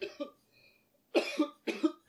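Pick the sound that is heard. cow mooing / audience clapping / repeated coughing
repeated coughing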